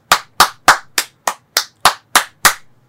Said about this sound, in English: Yeah, it's like 23 claps. Well done.